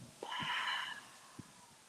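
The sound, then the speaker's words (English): A deep breath drawn in through the nose, part of a guided breathing exercise, makes a steady, airy hiss for just under a second, followed by a much quieter stretch as the air goes back out through the mouth. No one speaks. “So you can start with taking that deep breath into your nose and breathing out of your mouth.”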